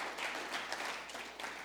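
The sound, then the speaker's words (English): A steady wash of applause from a crowd, many hands clapping together in a dense, continuous patter at moderate volume, with no voices standing out over it, given as appreciation applause for the people watching from an overflow room. “And so we just want to, this is actually an appreciation applause.”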